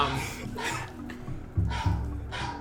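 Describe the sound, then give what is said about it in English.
A dog yips and whimpers in a few short, bursty outbursts, with a low rumbling background underneath and brief pauses between the cries. “Those are the animals. It's a dog.”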